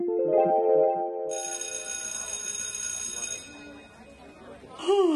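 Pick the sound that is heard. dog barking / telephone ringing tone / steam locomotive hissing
telephone ringing tone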